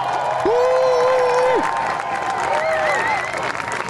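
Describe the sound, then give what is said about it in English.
A loud, high-energy crowd cheers and applauds in a dense, continuous roar, with a sustained shout or whistle rising above the noise early on and shorter cries later. “High energy crowd.”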